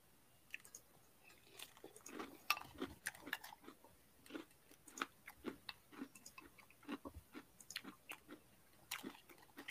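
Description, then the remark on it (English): Crunchy Brownie Brittle brownie bits cereal with 2% milk being chewed, a steady run of sharp crackling bites and crunches repeating irregularly for several seconds, loud with no talking. “Nice. Crunchy. It is very crunchy.”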